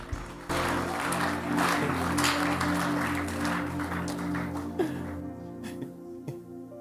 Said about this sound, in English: Give the Lord a clap offering here.